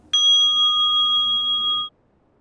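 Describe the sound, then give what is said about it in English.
A single meditation bell strikes cleanly and rings with bright, steady overtones for under two seconds, then cuts off abruptly into near silence. “you'll only hear a few seconds of the bell. Actually, less than that, maybe a second of the bell, and then there'll be a bit of quiet.”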